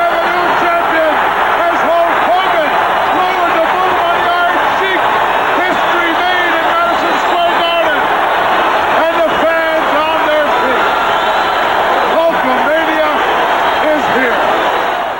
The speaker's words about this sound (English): That is an electric crowd. Yes. For Hogan Sheik, which is a 5-minute world title match.